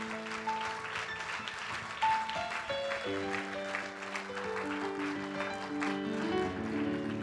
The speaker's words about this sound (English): Come on, give God a good praise clap.